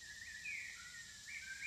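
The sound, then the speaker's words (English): Faint birds chirp in short high-pitched bursts over a steady airy outdoor hiss, with no one talking. “It's birds, baby.”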